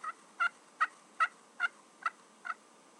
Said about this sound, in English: there's really not much more irritating than going to the woods early in the morning, hear a turkey gobble on the roost, you walk over to where he is, and then you hear ever so faintly in one of the trees very near him, you hear a tree call of a hen.